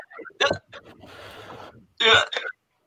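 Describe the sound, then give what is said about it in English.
A loud burp: two sharp throaty bursts frame a longer, rougher rumbling stretch in between, with no other sounds around it. “Good burp, ….”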